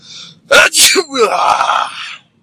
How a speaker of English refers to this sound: Here you go. 2 sneezes yesterday, 1 today. I must be getting better.